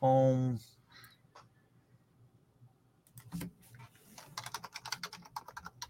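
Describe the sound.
A short burst of voice opens, then after a quiet stretch someone types on a computer keyboard, a quick, irregular patter of crisp clicks that grows busier toward the end.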